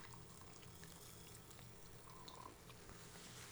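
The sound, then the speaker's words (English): Champagne is poured from a bottle into a glass with a steady fizz of bubbles, a continuous soft hiss crackling throughout with no one speaking. “Oh, she's directing me to actually pour her more I need a little champagne.”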